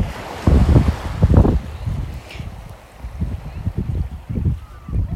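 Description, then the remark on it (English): Gusty wind buffets the microphone outdoors while the water of a body of water laps and splashes in irregular, low rumbling pulses, steady throughout, with no clear talking. “That is this body of water.”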